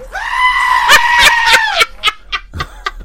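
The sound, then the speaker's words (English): A goat, in a sound effect of a screaming goat, lets out a long, loud, quavering bleat, followed by several sharp clicks and knocks as it trails off; no one speaks. “You know that's a goat, by the way?”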